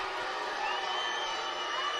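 A packed arena crowd at a basketball game, reacting against a foul call after seeing the replay, roars in steady, dense disapproval, a loud continuous wall of many voices that holds without pause, with no single voice standing out.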